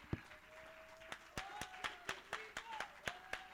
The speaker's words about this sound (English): Oh, somebody ought to clap your hands and give the Lord some praise.